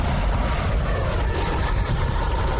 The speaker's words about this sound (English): And of course, the planes landing at LaGuardia.